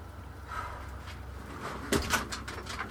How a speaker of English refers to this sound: I am, but I need to open the door because it's hot. Okay.